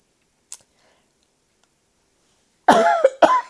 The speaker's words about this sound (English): I start to be coughing.